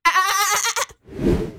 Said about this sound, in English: Goat sound